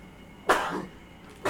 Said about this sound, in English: Bless you.